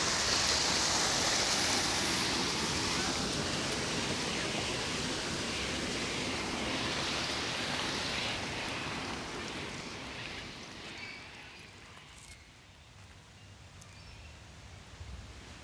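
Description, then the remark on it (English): A steady wash of harbour water and waves in Sydney fills the scene with a broad, hissing roar, holding loud for several seconds before gradually easing and thinning out toward the end. No one speaks. “for me, the sounds of Sydney are all about water.”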